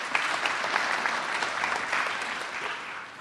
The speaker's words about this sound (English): Yeah, you can clap. That's okay.